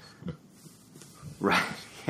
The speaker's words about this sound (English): And if those of you listening at home are hearing squeaking, I apologize. My golden retriever puppy is below my feet and is having, sounds like quite the dream.